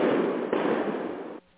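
sound effect, fireworks going off outside

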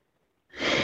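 human body sound, excited gasp

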